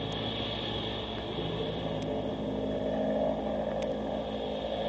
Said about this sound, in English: We'd better get in there quick with this plane diving like crazy.